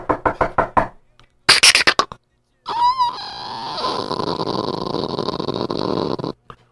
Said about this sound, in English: Let me just walk over. Let me knock on this door.